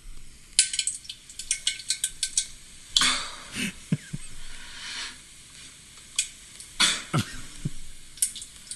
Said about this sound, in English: It sounded like a kid playing in a small body of water.